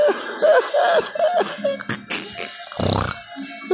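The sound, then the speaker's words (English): A muffled, stifled cough bursts out, a short choked hack followed by a strained, throaty exhale, with some low vocal noises just before it. “Ooh, I almost coughed up a storm right there, but I caught that shit like a bad habit, you know what I mean?”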